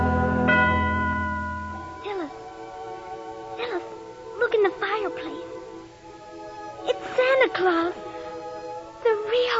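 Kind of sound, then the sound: sound effect, bells ringing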